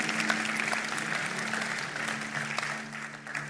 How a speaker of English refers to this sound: Do me a favor, give yourself a round of applause for being the best church.